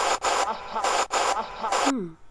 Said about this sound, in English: So in between the static, when the static stops is when you hear the uh-huh.